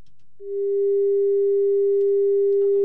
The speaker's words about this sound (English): Was that the phone? Oh, yeah.